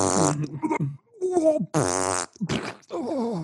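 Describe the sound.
A voice makes several loud, buzzy, wet fart-like noises in quick succession, each blurt rising and sputtering out, with short gaps between them.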